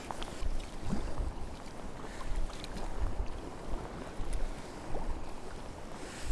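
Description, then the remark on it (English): A small waterfall, looking delicate rather than in spate, trickles and splashes steadily, a continuous wash of running water with faint gusty rumble underneath and no voices. “That's a really beautiful waterfall. Must be impressive when it's in spate after a lot of rain. But at the moment, it's looking quite delicate.”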